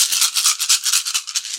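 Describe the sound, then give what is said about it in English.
A dense, continuous rattle of many dice being rolled, clattering together, fairly loud, for over a second before ending in a heavier thump as they tumble out. No one speaks. “would you like to roll the dice?”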